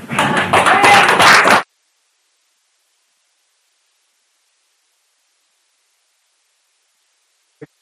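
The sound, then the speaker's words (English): A dense burst of audience applause given as a round of applause to Jesus at the close, many hands clapping at once, loud for about a second and a half before cutting off abruptly into silence, with one faint tap near the end. “I want to, if we can, just give a round of applause to Jesus.”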